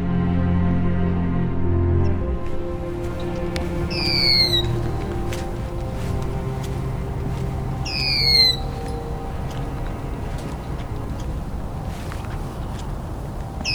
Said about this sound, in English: It's early morning in early March at Bayfront Park in Hamilton. This is the first morning I've been here that the red-winged blackbirds have arrived.